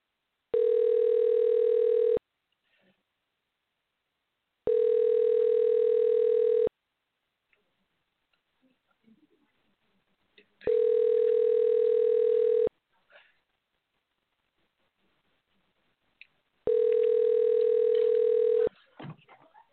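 A telephone ringback tone sounds while an outgoing call waits to connect: four steady, loud buzzing tones of about two seconds each, spaced by pauses, with faint rustling between them.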